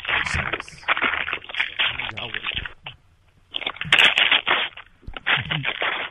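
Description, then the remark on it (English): Paper rustles and crackles in fairly loud, irregular bursts of crinkling noise, broken by a couple of short pauses before the handling starts again. “Here, listen to the rustle of the paper.”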